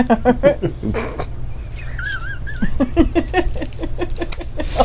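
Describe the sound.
A person imitates a cat grooming itself with quick, wet licking and smacking noises, close and fairly loud, while other voices talk and laugh over it and a brief squeaky warble rises midway.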